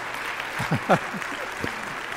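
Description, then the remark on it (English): An audience claps in praise of the Lord, a steady, dense wash of applause filling the room, with a few voices briefly calling out over the clapping. “You can clap on that one too, because praise the Lord on that.”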